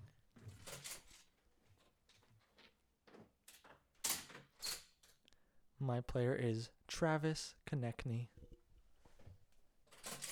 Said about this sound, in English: And now I've opened the door, and Tyce is coming back into the room.